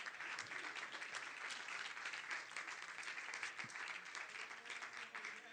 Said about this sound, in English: In the name that is above every name, would you clap your hands and just give the Lord some praise while you're being seated?